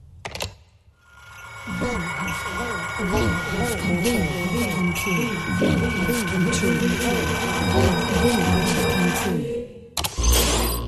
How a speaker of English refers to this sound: Wait, is that what your modem sounded like?